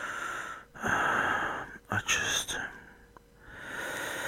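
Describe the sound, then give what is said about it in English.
Strained, raspy breaths: a long effortful inhale, then a couple of quick catching gasps, a pause, and another drawn-out wheezy breath starting up, from a person who is unwell and cannot catch their breath. “And the biggest part of it is I can't catch my breath. I try and breathe in and it's tight.”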